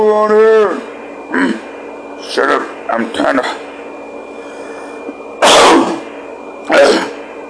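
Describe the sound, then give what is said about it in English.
A person makes a brief voiced groan, then a series of rough, irregular throat-clearing coughs, about five harsh bursts spaced a second or so apart, fairly loud, as he tries but fails to cough something up from his throat. “He has a frog in his throat. He's trying to cough it up, but he cannot cough it up because he's stupid.”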